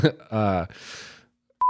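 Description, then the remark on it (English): A voice speaks briefly, then after a short pause a loud, steady, high-pitched censor bleep cuts in as a single pure tone and holds to the end. “Yeah, no, bleep this.”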